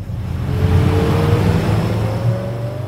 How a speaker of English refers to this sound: A couple miles away, a small boat speeds along the Willamette River.